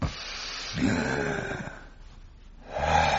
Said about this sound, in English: What a lung you have there, sir. It's a pleasure to hear your hearty breathing.